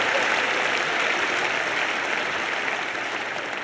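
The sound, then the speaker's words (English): A large crowd claps hands steadily to love the Lord, a dense, continuous wash of applause filling the room at a loud, even level for several seconds with no voices standing out. “Let's clap your hands and love the Lord right now.”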